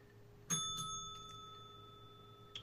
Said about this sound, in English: Ring the bell, DP.